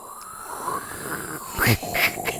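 A comic fart sound effect: a long, raspy, sputtering rumble that swells into two louder blasts toward the end, with a breathy hiss running throughout and no voices.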